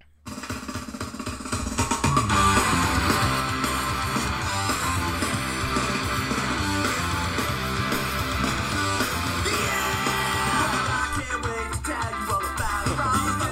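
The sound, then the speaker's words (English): A loud, dense rock song from the Tony Hawk's Pro Skater 1 video game soundtrack, with gritty distorted instruments and a steady pounding beat, kicking in after a brief quiet start and playing continuously without talk. “That is officially off the Tony Hawk Pro Skater 1 soundtrack.”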